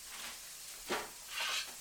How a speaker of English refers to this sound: Onions are sizzling away. I'm just sweating those down. Getting nearly translucent. Getting ready to put in the garlic.